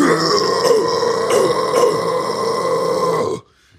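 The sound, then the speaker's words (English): A loud, sustained guttural death metal scream, rough and growling with a few harsher pulses, held for about three and a half seconds before cutting off abruptly. “Can I get a death metal scream from everyone?”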